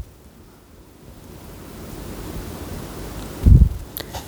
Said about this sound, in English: Can you calm down the rain for one fucking minute?